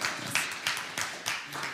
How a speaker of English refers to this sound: I like it when we do the clap for scripture thing. I think we should clap for... We're going to make it a thing.